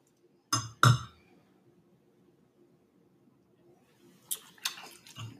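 Two sharp glass clinks ring out close together as glasses are toasted, then after a quiet pause a soft, crackling hiss of a carbonated raspberry framboise beer from Madison, aged in French oak barrels, fizzing in a glass rises briefly near the end.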